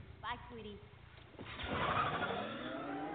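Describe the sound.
A car in a film trailer roars up and accelerates as it pulls out, the loud rushing noise building and holding through the second half, with a brief voice heard just before it starts.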